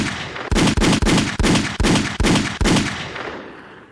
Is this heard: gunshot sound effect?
yes